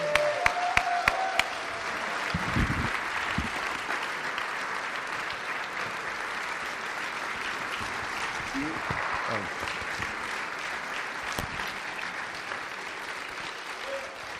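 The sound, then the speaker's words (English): A large standing crowd claps steadily in a dense, sustained wash of applause as a pastor makes his way up, with a few scattered cheers and whoops rising above the clapping for about fourteen seconds. “Hop to your feet once again. Put your hands together. Let's give the most audacious cheer”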